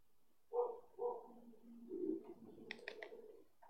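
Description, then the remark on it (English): A dog barks a few times in the background, muffled and fairly faint, with short irregular woofs spread across the moment and no one talking. “The dog barking in the background is not.”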